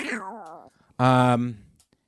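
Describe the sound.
A person imitates a cat meowing, two calls: a wavering, drawn-out meow followed by a louder, sustained, nasal one that fades off.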